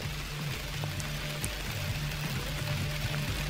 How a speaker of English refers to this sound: Oh, you might be able to hear this rain. Perfect way to end this podcast.